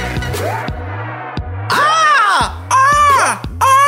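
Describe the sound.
A person's voice imitates a bird's caw with loud, drawn-out, wavering squawks, repeated several times over a steady thumping low beat.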